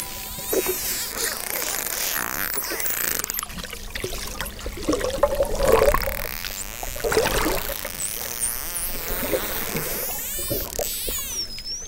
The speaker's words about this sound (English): I mean, a lot of that is the dolphins just doing whatever they're doing.